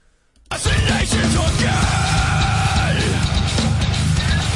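After a brief moment of silence, a loud nu metal song kicks in abruptly: dense distorted guitars and pounding drums, with a yelled vocal sustained over the heavy mix.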